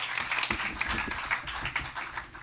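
A crowd applauds steadily to welcome a speaker to present, dense overlapping claps at moderate loudness with no one speaking over it.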